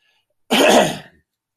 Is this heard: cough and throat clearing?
yes